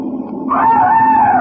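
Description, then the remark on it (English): A low rumble gives way to a sustained, high-pitched scream that holds one wavering tone for about a second, coming from somewhere in the car. No shattering or breaking glass stands out. “It sounded like a scream. Yeah, glass breaking.”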